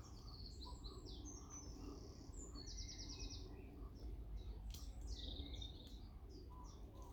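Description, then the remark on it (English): Many birds chirp and chatter at once in the woods, overlapping calls and trills over a steady low rumble of outdoor ambience, with no voices. “So in the woods, you can probably hear all the chatter of the birds.”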